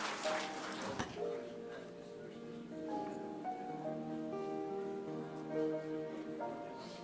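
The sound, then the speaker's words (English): A church audience claps for a woman, a dense patter of applause that is loudest at the start and then carries on beneath sustained, shifting musical tones. “Let's just give her some applause.”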